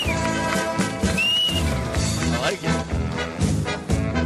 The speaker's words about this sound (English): Can you whistle more? Oh, I bet that's good for people. I asked you to do it, and then I realized it's in people's ears. Yeah, that hurts. But it was still good.